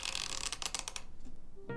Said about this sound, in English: The door slid open, and in walked an angel.